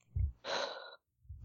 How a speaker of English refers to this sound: I was just sighing. I was just breathing.